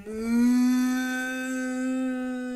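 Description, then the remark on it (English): A single long cow moo, loud, holding a steady droning pitch for over two seconds with no other sounds around it. “Can you moo like a cow?”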